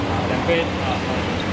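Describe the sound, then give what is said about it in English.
A steady, dense roar of road traffic at the Yilan Luodong Interchange fills the whole moment without letup, with a few faint, brief violin notes, played by an ice seller at a traditional Taiwanese ice cream stand, barely rising above the wash of engine noise. “The soothing notes of a violin ring out over the roar of traffic.”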